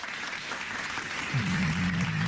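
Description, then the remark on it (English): A burst of applause sound effect, a steady wash of many hands clapping, with a low sustained hum joining in partway through. “No, that's not a clap. That's not a clap. Wait, I got you.”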